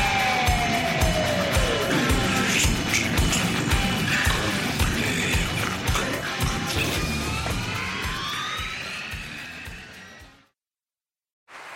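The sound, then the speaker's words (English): A loud, dense roar of crowd cheering with rising whoops and whistles, steady for about ten seconds before cutting off abruptly into silence. “Hear that? Is that America cheering or a sausage patty sizzling to perfection?”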